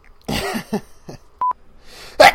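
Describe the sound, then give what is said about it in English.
A loud, sharp sneeze burst followed by a couple of shorter breathy snorts, a brief two-pulse electronic beep, then another abrupt sneeze-like burst at the end. “That's a real sneeze.”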